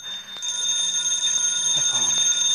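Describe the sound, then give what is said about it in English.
A telephone rings with a continuous, shrill electric bell that starts abruptly after a brief low sound and keeps jangling loudly, with no one speaking. “The phone.”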